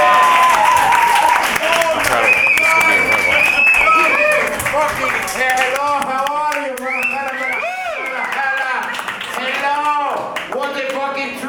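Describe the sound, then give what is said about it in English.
Loud applause from a comedy club audience with a few whistles as a comedian is welcomed to the stage, thinning out after a few seconds as a man starts talking over the last scattered claps. “With a very strong round of applause, because we'll let him know he's welcome.”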